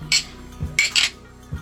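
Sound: glasses clinking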